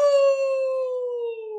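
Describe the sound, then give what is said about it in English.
A single wolf howl, one long sustained tone that sinks slowly in pitch, loud, with no talking or other sounds around it. “And let me tell you, I am a proud member of the Wolf Pack. Let me hear it.”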